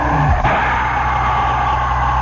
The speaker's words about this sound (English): And these cars roll on by on that first, that ceremonial lap.